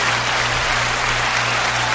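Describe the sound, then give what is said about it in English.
A recorded applause sound effect being played: many hands clapping in a dense, steady wash of sound, loud and continuous for the whole two seconds with no voices over it. “First thing I wanted to applaud for is a little bit.”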